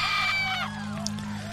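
A woman lets out a long, anguished scream on seeing her parents' burned bodies after a house fire, wavering and breaking into falling wails, loud, over a steady low droning background.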